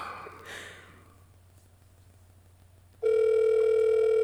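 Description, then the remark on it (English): After a few seconds of near silence, a loud, steady electronic ringback tone starts on an outgoing phone call placed after 10:30 at night and holds unbroken and clear until the end. “It's ringing.”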